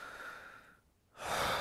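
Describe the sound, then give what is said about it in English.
A person imitates the breathing of a man who had broken down in recorded footage: a soft breathy exhale trails off into a brief silence, then a sudden, loud, sharp intake of breath. “You can see his mouth open and like take that gasp and like that.”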